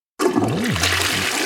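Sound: toilet flushing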